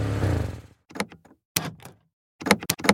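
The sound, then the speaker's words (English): A car door lock at a gas pump actuates with a series of sharp mechanical clunks and clicks in short bursts as the auto unlock button is pushed repeatedly and the door keeps relocking, following a brief rumbling whoosh, fairly loud with no voices. “Only when he attempted to open the door, it locked.”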